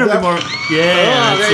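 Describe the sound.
A brief, loud burst of crowd cheering, with overlapping whoops and shouted voices rising together for about a second and a half.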